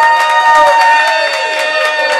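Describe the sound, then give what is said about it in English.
A huge crowd at a show roars with cheering and scattered clapping, a loud, steady wash of noise that holds for about two seconds without letting up. Faint steady tones run underneath. “Yeah, there it is. There, a huge crowd.”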